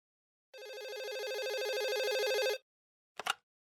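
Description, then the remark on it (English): A telephone rings in one steady electronic burst lasting about two seconds, then stops, followed by a short click like a handset being picked up. No voices are heard. “Okay, phone conversation coming up.”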